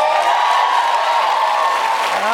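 A studio audience applauds steadily, a dense, even wash of clapping hands with a few faint cheers mixed in, holding at the same loudness from start to finish.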